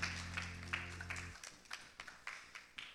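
Sparse, scattered clapping from a small audience, fairly faint and distant, with irregular individual claps over a low hum that drops out partway through; no one speaks.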